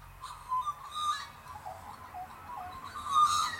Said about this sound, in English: But first, listen to those birds.